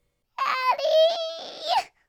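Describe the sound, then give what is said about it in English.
A little girl cries in one long, high-pitched wail that wavers and briefly catches before tailing off. It is loud and stands alone, with no talking around it. “The little girl, covered in blood and half the remains of the dog, cried.”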